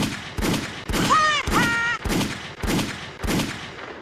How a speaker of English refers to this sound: Gunshots. Motherfucking gunshots in the goddamn chat, you dig?